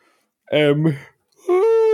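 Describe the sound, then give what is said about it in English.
A loud yawn drawn out in two voiced bursts, the second rising in pitch and held, with a brief pause between them and no one talking. “I was going to keep my yawn inside, and then I said, the listeners deserve to hear it.”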